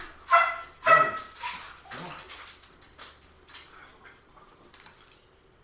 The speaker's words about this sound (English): Sorry. There was a dog outside. He got a little excited.